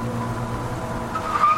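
A car engine drones steadily with low rumbling tones as the car pulls up to a quarantine zone, then a high tire squeal rises near the end as the vehicle skids. No one speaks.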